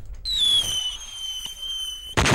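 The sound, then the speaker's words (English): A bomb explosion sound effect: a long, high whistle slowly sliding down in pitch for about two seconds, then cut off by a sudden loud, noisy blast. No one speaks. “I mean, if you're triggered by the sounds of bombs, you shouldn't click on the bombshell episode.”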